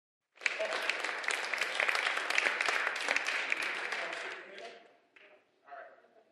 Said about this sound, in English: All right, give those folks a round of applause, people.